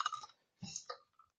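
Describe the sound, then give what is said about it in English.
Rapid clacking of a very loud computer keyboard as someone types while searching for a letter: a quick flurry of keystrokes, a short pause, then another burst of taps and one last light click, with no talking. “Excuse me for the tapping away. I don't know where I had to get the one of the loudest keyboards ever, but I don't know about you, but I find the tapping very therapeutic.”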